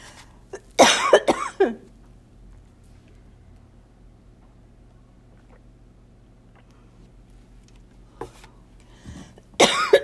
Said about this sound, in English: Even when you're coughing. Excuse me.